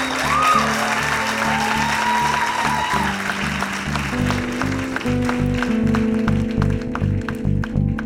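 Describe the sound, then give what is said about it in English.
An audience applauds steadily, a dense wash of many hands clapping at a fairly loud, even level throughout, with faint background tones and no one speaking over it. “It's a round of applause.”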